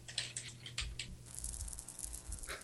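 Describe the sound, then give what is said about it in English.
Rapid, irregular clicks of typing on a computer keyboard, quiet, with a low background hum and no voices. “I think I need a louder keyboard.”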